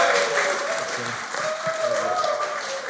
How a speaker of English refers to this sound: Do me a favor and give a big round of applause to my dad,